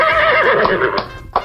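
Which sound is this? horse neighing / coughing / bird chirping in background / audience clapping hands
horse neighing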